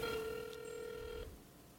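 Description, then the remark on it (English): A phone call being dialed on speakerphone: one steady, buzzy electronic tone holds for about a second, then cuts off abruptly, leaving faint low background noise. No one speaks. “I'm going to call him right now. Can you put it on speaker?”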